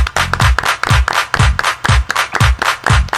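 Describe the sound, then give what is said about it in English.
A crowd claps in a steady, driving rhythm, loud, with deep thumping beats falling between the sharp hand claps. No one talks over it. “Everybody clap”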